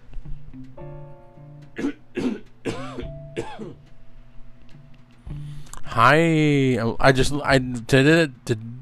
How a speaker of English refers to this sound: High diversity, and here comes the cough. I apologize.